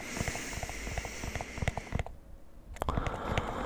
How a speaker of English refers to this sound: So, hope you enjoyed the scissors.